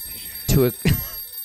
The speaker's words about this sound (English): Suddenly, an alarm.